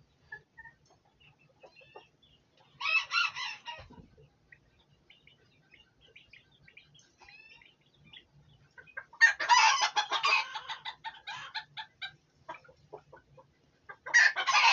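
Hens clucking and squawking in a few loud bursts: a short outburst, a longer noisy flurry a few seconds later, then another starting at the end, with quiet chicken murmurs between and no talking.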